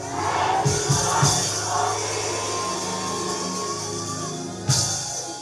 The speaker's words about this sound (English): And then open up your mouth at the count of three, screaming from your belly. 1, 2, 3, go!